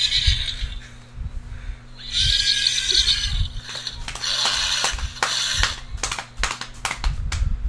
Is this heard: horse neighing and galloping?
yes